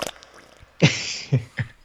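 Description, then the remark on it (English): A voice imitates a fart: one longer, sputtering raspberry burst followed by two shorter, breathy puffs, fairly loud against an otherwise quiet background. “oh, I got a tight fart”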